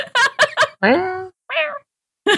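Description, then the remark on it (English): A person imitates a cat's chirpy meeping cry, the sound a cat makes when woken, with a few short high-pitched squeaks and a longer drawn-out mew, the vocal calls fairly loud, spaced by brief pauses. “It's that sound that your cat makes when you wake it up.”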